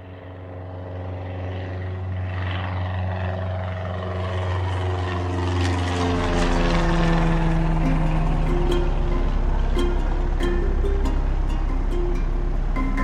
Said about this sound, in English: The tiny plane banked and headed north. It was a sunny morning in 2015, and the pilot and I were flying out of a Johannesburg airfield towards the Zimbabwe border.